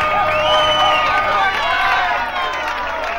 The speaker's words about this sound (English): But this album is the fakest of all, because they didn't have the decency to record the shouting and clapping live. No, they dubbed it in, but with every song the same piece of tape. Now listen to some samples with the volume cranked up.